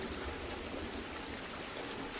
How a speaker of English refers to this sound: Little Georgie in his lovely yellow coat is running after his little boat in the rain. His little boat goes down a little storm drain,